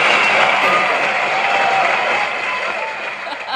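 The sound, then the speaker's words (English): A loud, steady burst of applause from a crowd, dense clapping with some cheering mixed in, sustained for a few seconds and easing slightly toward the end. “That is my truth applause.”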